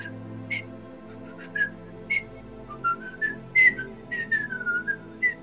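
A person whistles a short, lilting tune from The Sorcerer's Apprentice while cleaning with a mop, the clear notes rising and falling in quick phrases with brief pauses, over a soft steady background hum.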